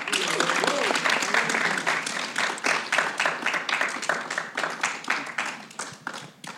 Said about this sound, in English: Ladies and gentlemen, can you please give a roaring applause for Cuban prima ballerina Alicia Alonso?